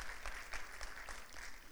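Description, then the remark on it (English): An audience at a church service applauds together, giving the Lord a hand: a dense, steady clatter of many hands clapping at a moderate level, with a few louder bursts rising out of the wash of sound and no voices on top. “And if you want to clap, give the Lord a hand once again.”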